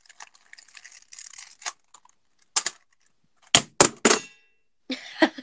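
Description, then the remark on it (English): A small needle drops onto a computer keyboard, landing with a quick cluster of sharp plastic clicks and rattles after some faint scattered tapping. No one speaks. “Oh, a needle just dropped on my, keyboard.”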